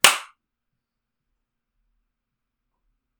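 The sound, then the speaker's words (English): A single sharp hand clap, made to mark a recording for syncing, rings out loud at the very start, decaying quickly, followed by several seconds of silence. No one speaks. “Do we want to clap as well to mark this?”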